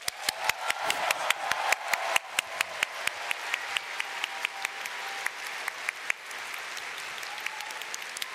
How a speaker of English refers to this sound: So I'd like everyone to once again give him the biggest round of applause.